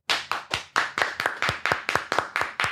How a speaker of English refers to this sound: But yeah, I've called a man like 50 something times and clap your hands if you think that's crazy.